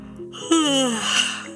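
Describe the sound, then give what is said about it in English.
A voice performs a single drawn-out yawn, a breathy, airy sigh whose pitch slides slowly downward over about a second, fairly loud, with no other sounds around it. “It yawned again.”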